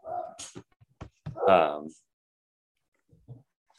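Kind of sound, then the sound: animal, dogs barking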